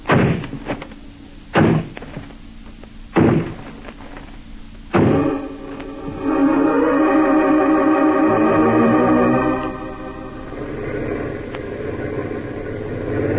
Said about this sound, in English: This is the place. It's a dance hall and tavern. They won't open up for us. All right, men. Smash down that door.